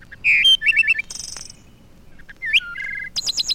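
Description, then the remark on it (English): A bird sings a lively, varied song of clear whistles, quick trills and bright chirping phrases, prominent over faint background hiss, with short pauses between bursts. “The song of a bird.”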